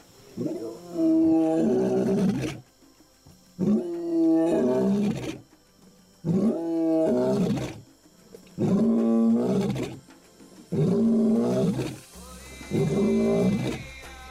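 A lion roars in a loud series of five long, deep, rumbling bellows, each lasting a couple of seconds and separated by brief pauses, with no talking.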